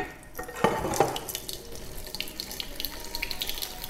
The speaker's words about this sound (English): I think I counted about 100 flowers here. And so I'm just gonna add water to it.